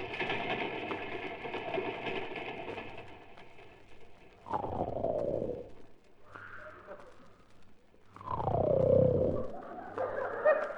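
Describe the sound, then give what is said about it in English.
A father snores loudly in the morning as his children try to wake him, in long, rough, rasping breaths with gurgling and whistling tones, each snore swelling for about a second or more between quieter pauses. “Listen to Daddy. Yes, Phyllis. He sounds just like the engine when it broke down at San Bernardino.”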